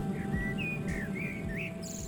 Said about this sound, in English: And then 2 days later, I walked to the shops and back, and I could identify the birds, the ones that were flying, calling, and the ones that were sitting in a tree, calling.